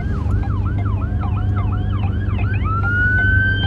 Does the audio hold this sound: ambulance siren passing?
yes